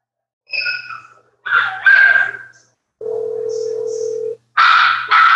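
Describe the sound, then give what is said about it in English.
Dogs bark in a house in a few loud bursts, some overlapping, with a brief pause; a steady electronic tone hums for about a second in between. “I'm going to tell him to put the dogs up.”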